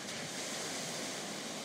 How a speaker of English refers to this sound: You look up and all you see is more sand in front of you, but you can hear the ocean. Walk towards the sound of the ocean.